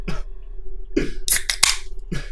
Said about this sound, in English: All right, so what I'm seeing is just a blue can with like a cherry and like a flag. Yeah. Or a plant leaves. That's all I see. All right? Now, I want you to open that soda next to your mic.